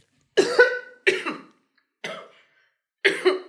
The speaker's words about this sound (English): Thankfully, there's no more wine in her cup, so she's not coughing on choking on wine. She's just coughing. I'm just coughing.